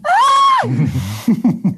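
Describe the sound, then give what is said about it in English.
A person performs a short, loud scream of waking up: a sustained high cry lasting about half a second that drops into low groaning and a few quick, breathy gasps. “I think she wakes up screaming.”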